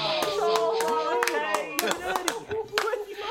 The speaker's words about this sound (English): Give him a fucking round of applause.